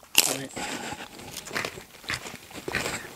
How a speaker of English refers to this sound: We're all crunching at once. That is amazing.